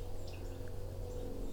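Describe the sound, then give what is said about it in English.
A few faint, brief high-pitched seeps and ticks from a fall migration flock of sparrows, warblers, blue jays and flickers, including a yellow-rumped (myrtle) warbler's tick, scattered sparsely over a steady low hum, with no songs. “Lots of ticks and seeps and calls, not very many songs.”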